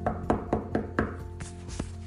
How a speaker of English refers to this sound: As he was unpacking all of his things, he heard a knock at the door.